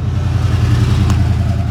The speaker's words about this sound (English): Very loud car. Yeah, very loud car. And another one. So, yeah, you get those sound effects because cars are zooming by. And that one was zooming right past us, and it was a broken down red truck.